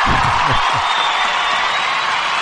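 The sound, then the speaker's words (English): A canned applause sound effect plays: a loud, dense wash of crowd clapping with faint cheers mixed in, holding steady for a couple of seconds. “Can I get a round of applause? See if that works.”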